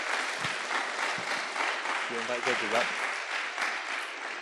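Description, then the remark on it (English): An audience at a poetry contest applauds all the senior and primary contestants steadily for the whole stretch, a dense, loud wash of clapping with no break, and a brief vocal cheer rises through it about halfway. “Can we give all our contestants, senior and primary, one huge round of applause?”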